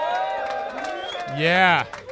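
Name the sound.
audience cheering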